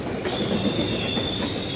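A subway train rolls along its rails with a steady rumble and a thin, continuous metallic squeal from the wheels running through it. No one speaks.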